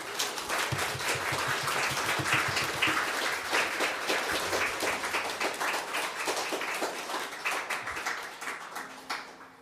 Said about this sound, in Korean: 보통 이 정도의 박수 길이는 예술의 전당이나 외세종문화회관에서 이 정도 길이로 치시거든요. 굉장히 격조가 있으세요. 정말 목포의 느낌을 확실히 깨우치고 갑니다.